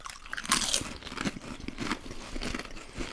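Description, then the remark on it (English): Crunchy Better Made salt-free potato chips being bitten and chewed, a loud crisp snap followed by a steady run of crackling crunches with no talking. “That was a crunchy boy.”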